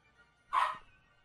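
A single sharp dog bark rings out clearly and loud, with brief quiet before and after and no one talking.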